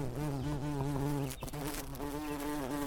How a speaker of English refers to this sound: Right now we're listening to a chorus of bees outside of my home in New Hampshire. Dozens, probably hundreds and hundreds of bees of every imaginable type. Bumblebees, honeybees, wasps, yellow jackets, bees that I don't really even recognize